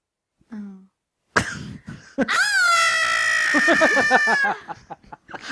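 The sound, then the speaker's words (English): A person does an impression of Kevin screaming when he realises he's home alone and runs up to the camera: a short vocal murmur and a sharp breathy burst, then a loud, sustained, high-pitched shriek lasting about two seconds before cutting off. “That's just a scream? Yeah, do that.”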